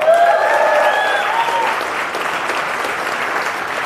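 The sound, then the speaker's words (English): A crowd breaks into steady, dense applause that holds strong for the whole stretch, with a few whoops and whistles rising over the clapping at the start before easing slightly. “You didn't let me finish Fauci Unmasked with Michael Knowles, so there's no need to clap. Absolutely no need to clap.”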